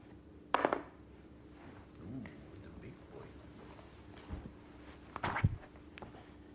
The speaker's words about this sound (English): This isn't your dad's dice roll.